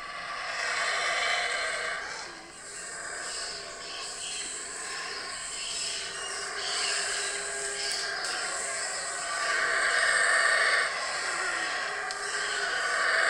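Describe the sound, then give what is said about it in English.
Howler monkeys roar from the trees overhead in Guatemala in a dense, continuous chorus, a rough droning wall of sound that swells and ebbs over about thirteen seconds, with insect-like buzzing mixed in and no talking. “That's me stopping as these monkeys are screaming above me on the in the trees.”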